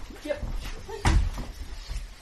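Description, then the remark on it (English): A drawer is pulled open with a single solid thud and a brief wooden rumble, among low, muffled voices and soft background noise. “Cloth? A drawer?”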